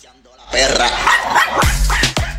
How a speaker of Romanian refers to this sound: Lăsăm câinii să latre